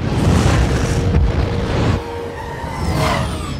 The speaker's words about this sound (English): Things were exploding, people were yelling. You know, the usual superhero stuff.